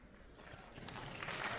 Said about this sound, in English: Thank you, Mom, for clapping for me over there. I appreciate that.